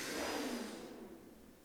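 A motorcycle engine passes outside, a muffled rumbling whine that is loudest at first and then fades away as it recedes, with no voices present.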